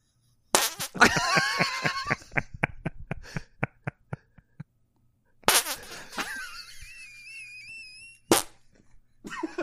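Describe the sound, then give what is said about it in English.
Wet, squelchy fart sounds made with cupped hands: a sputtering burst that breaks into a quick run of short pops, then a longer, squeaky, tonal blurt and one final sharp pop, loud. “The hands, the farting hands.”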